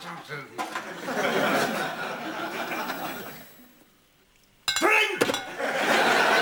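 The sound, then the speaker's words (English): Glass bottles of Chardonnay wine tap together in a couple of brief, bright clinks, set against a murmur of voices and audience laughter that fades, then swells back. “Just one little tap of the bottles and he's able to identify Jameson's Chardonnay.”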